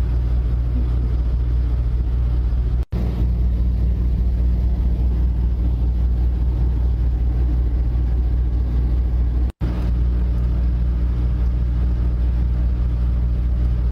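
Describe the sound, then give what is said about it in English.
A semi-truck engine drones steadily, a deep low rumble with constant mechanical hum, briefly cut by two short dropouts. No voices are present. “Rumbling semi-truck for 10 hours.”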